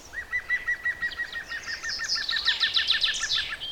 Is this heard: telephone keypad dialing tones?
no